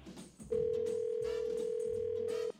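A telephone call placed by a K95.5 radio morning show ringing out: one steady, loud ring tone lasting about two seconds, with quiet music playing underneath and no talking.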